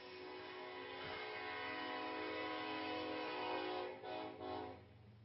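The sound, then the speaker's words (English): A train horn blares in one long, loud, sustained blast with a rich chord-like tone, wavering briefly near the end before holding again. No one speaks. “Then he can blow a horn.”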